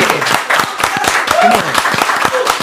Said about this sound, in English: Yo, give it a clap. Come on. Come on.